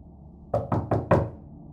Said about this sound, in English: So as you're focusing, there's a knock at the door.